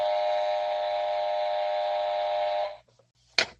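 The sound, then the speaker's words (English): A loud, sustained buzzer blares steadily for about two and a half seconds, then cuts off abruptly, followed by a brief sharp burst of noise. “Hey, give me my goddamn buzzer right there.”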